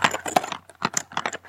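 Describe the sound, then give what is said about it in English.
Mighty Beans toy beans rattle in quick shaken bursts, a dense clatter of small hard clicks that pauses briefly midway before another round of shaking. No one speaks. “As my magic beans, I'm sorry, my mighty beans.”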